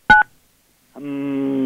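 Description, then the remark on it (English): A single short telephone keypad beep as the eight key is pressed, a bright two-tone blip, then after a pause a man hums a steady, sustained lower note, trying to match the tone. “Okay, now I'm going to, as I punch the eight, sir, can you be as loud as you can? Try to match this tone.”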